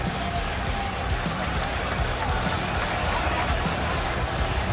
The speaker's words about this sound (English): That's what we cheer, and that's what they're cheering right now for both men. And right now, listen to the cheer. This crowd has not been silent since the first moment, the first entrance. They went crazy on a lockup.